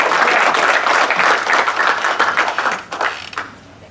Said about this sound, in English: But please give a warm introduction, a warm applause for Shirin Heskel from the National Union.